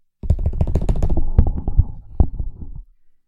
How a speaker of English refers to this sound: All right, we're going to do a drum roll.